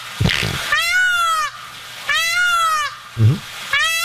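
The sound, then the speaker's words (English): A recording of peacocks played over the phone as a voicemail gives three loud, nasal, wailing calls, each drawn out and slightly falling in pitch, the last one cut short, with a few dull thumps between them. “We left him a voicemail of some peacocks or peafowl or whatever the hell.”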